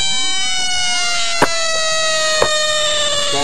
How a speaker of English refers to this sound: Here's a screeching frog. Frogs.